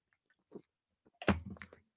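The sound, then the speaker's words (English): A quick sip of zero sugar Dr Pepper soda: a few faint mouth clicks, then a short wet slurp and swallow, with no talking. “I'll take a sip every time I say Hard Times”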